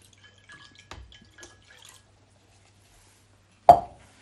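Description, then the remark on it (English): About 5 fluid ounces of water pours into a drink mixture of sugar, oranges and brandy, heard mostly as one sharp splash into a container, preceded by a few faint small clinks and drips. No one speaks. “Should we try 5 fluid ounces?”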